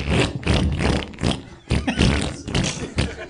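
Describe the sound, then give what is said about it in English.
A voice makes wet, squelchy mouth noises imitating a peanut butter sandwich being made, loud, fart-like and sputtering in several bursts with a brief pause midway, no words spoken. “So I'm gonna make a peanut it butter sandwich. Very fart like.”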